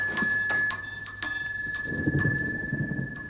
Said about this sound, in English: If you're here, sir, who's ringing the bell? Bell? What bell is it? It's the bell in the room in which you're working, sir.